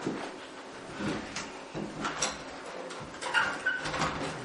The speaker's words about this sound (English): Windows, you can open. Can we open these? Yeah, window open.